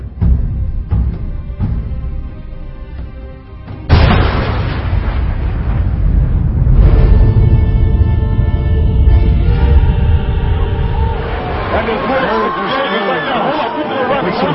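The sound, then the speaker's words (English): A loud, sudden explosion bursts in a few seconds in and gives way to a sustained roaring rumble, with indistinct crowd chatter and commotion running underneath throughout. “We've got an explosion.”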